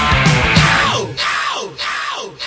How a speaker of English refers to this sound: Apparently, the end of this track, where you get the echoes of him shouting no.